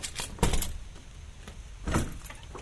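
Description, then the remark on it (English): Keys jingle and clink in two short bursts, the second near the end, with metallic rattling as a locked door to an old bathhouse at a manor is unlatched and opened. No one speaks. “You'll notice that this is one of the only locked doors at the manor.”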